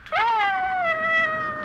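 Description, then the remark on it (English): A dog named Ranger lets out one long, high whine that rises sharply at the start, then holds and slowly sinks in pitch for over a second, loud and alone with no talking. “What's gotten into that dog?”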